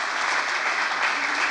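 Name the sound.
audience clapping and shouting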